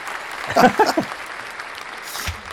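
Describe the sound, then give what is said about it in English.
Steady studio audience applause, a dense even patter of many hands clapping throughout, with a brief burst of voice rising over it early on before the clapping carries on alone. “We'll get the our studio audience to give you a round of applause.”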